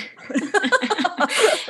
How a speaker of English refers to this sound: Bless you.